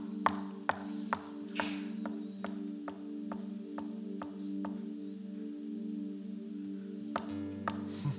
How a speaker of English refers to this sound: But it says, but Peter kept knocking.